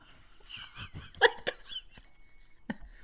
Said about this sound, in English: What the hell is that? That's my coffee maker. Sorry.